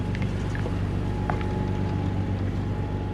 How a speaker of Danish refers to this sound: Motorlyden kommer nemlig fra en stor fiskerbåd, der skal trække deres ødelagte båd til Sverige.